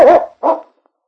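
A dog, Yukon King, arriving with Sergeant Preston at the constable's office in Whitehorse, gives two quick barks, the first slightly longer and more tonal, then silence. No one speaks.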